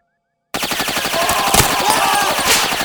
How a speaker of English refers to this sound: They fired their weapons. They tore through Clyde's very cool desert warrior clothing, spraying the wall and door behind him with bullets.